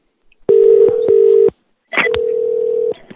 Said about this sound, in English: Are all the phones ringing?